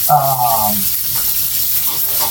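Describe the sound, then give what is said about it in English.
A steak sizzles steadily as it sears in a hot pan, a constant crackling hiss throughout, with a brief murmur of voice at the start. “So once we get the good sear on this side, we're going to turn it down some.”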